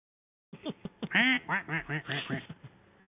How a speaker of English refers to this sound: A duck.